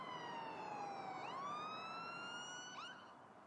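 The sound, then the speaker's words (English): An emergency vehicle siren wails steadily, its pitch sliding slowly down and then rising again, with strong harmonics over a constant background rumble and no voices. “And then I remember hearing the sirens.”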